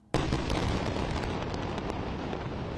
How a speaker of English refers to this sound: Explosions rumbled through the night after Israel declared war on Hamas on Saturday.